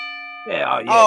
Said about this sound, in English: Can I get one more bell? Got to hear it like it was from back in the 80s or some shit.